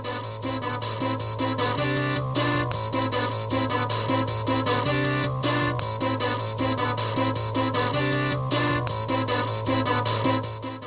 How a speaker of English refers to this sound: It sounds awful. Oh, man. They really translated that theme over perfectly, using all the power of the Amiga to pull it off, brother. So we're looking at Double Dragon.